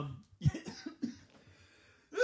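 cough and throat clearing

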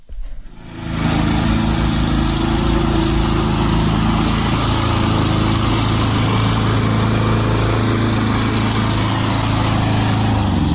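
lawnmower running

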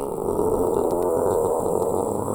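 dog growling

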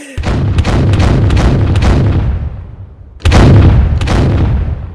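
cannon fire sound effect

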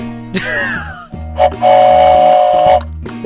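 train arriving at station

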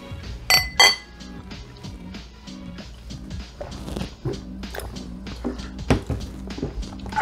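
beer glasses clinking

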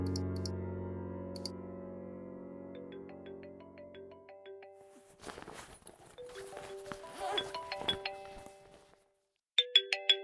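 phone ringing

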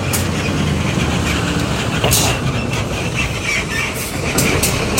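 truck driving past

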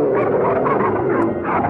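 dogs barking and growling

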